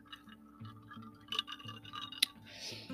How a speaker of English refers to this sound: Yes, if you hear some ice in a drink, I'm having my own adult beverage to toast to Veterans Day.